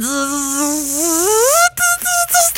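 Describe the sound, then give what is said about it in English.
A voice imitates a swarm of bees with a loud, sustained buzzing drone that rises in pitch, then breaks into a few short, choppy buzzes near the end. “Because the bees also flew out. And the bees were like, zzz, who threw that Frisbee?”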